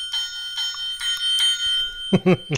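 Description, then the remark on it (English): The bell of a Hector bobblehead figure by Royal Bobbles, the original bell with the exact sound sample from the show, dings four times in a quick, even series, each ring briefly sustained, before a voice cuts in at the end. “that is so cool with the bell. That's right, the original bell with the exact sound sample from the show.”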